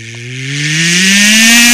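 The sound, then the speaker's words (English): A voice imitates the droning hum from a truck's back end as it speeds up on an expressway, a buzzy, engine-like tone that climbs steadily in pitch and swells louder over under two seconds, with no words spoken. “Like, whatever noise it was making was getting even louder.”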